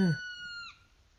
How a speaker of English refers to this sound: All right. That was a woodpecker, apparently.